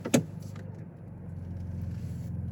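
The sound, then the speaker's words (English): An SUV engine runs in its Baja exhaust mode, a loud exhaust setting meant for off-road use only, giving a deep, steady rumble that continues throughout after a brief sharp click at the start. No one speaks. “Oh, there's a Baja exhaust. Baja. Oh, that sounds cool.”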